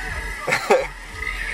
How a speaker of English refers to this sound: Oh, he's coughing.